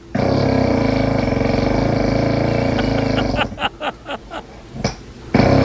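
human body sound, man snoring loudly

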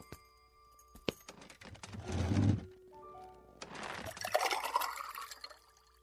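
household object, water being poured

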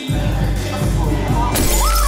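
impact, glass shattering

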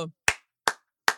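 crowd, clapping

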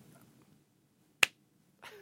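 human body sound, clapping hands

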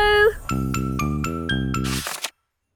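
sound effect, jingle bells ringing

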